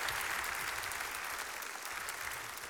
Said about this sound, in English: We have any 50-year marriages? Look at that. Let's applaud that for a minute, because that's incredible.